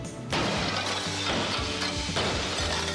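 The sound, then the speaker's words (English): Glass loudly smashes and shatters, with a sharp initial crash followed by repeated impacts and a dense spray of breaking, tinkling fragments, with no voices. “Thermal safe security glass can protect you and your family from flying debris and accidental or intentional glass breakage.”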